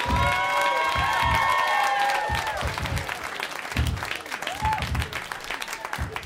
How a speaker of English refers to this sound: That was my big finish where everyone was clapping for me and shit.